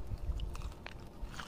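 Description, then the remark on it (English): A crunchy bite into pepperoni pizza, followed by a few seconds of crisp, crackly chewing with no talking. “The crunch of pepperoni.”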